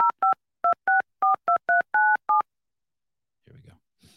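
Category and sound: signal or alarm, phone dialing tones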